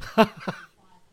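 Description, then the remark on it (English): Two harsh coughs in quick succession, the first loud and raspy, the second a bit softer, followed by near silence with only a faint low hum. “And stop with the Extreme D, because it apparently causes you to cough up furballs.”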